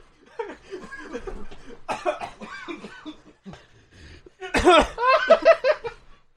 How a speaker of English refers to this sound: What happened? Why am I coughing now? Oh no!